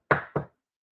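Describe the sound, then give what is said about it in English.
Two quick, firm knocks on a door, evenly spaced, each a dull wooden thud that fades fast, followed by silence. “And the one would come knocking on my door at 3 o'clock in the morning.”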